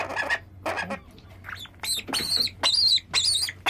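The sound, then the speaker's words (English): A seabird chick calls in a rapid series of harsh, squawky cries while being fed by syringe, about eight bursts in under four seconds, with a faint low hum in the background and no talking. “This bird is particularly vocal, which is good.”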